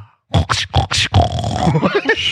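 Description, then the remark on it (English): A pig grunts in four short, loud bursts, then snorts and squeals in a rough, continuous stream of lower grunting. “Why would pigs come in at the end?”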